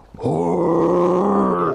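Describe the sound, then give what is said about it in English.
A single guttural heavy metal scream from wrestler Abaddon's entrance theme, a loud, rough, growling roar held steadily for about a second and a half before cutting off, with no talking. “You know, that guttural heavy metal scream sort of thing.”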